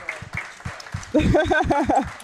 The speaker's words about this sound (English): Here he gets a round of applause. Here he comes. Wow.